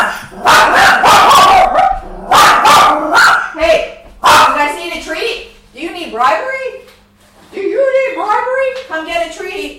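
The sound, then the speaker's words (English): A dog barks loudly in a rapid series of sharp barks, then settles into higher, drawn-out whiny yips and whimpers that continue to the end. “We got a dog crisis.”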